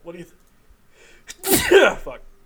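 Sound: sneeze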